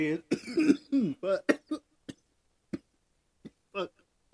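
A fairly loud burst of throat clearing and raspy coughs, followed by a few short, isolated coughs spaced out over the next couple of seconds.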